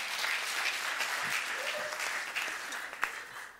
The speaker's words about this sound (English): Oh, yeah. If I can have a round of applause for these two fathers, praise God.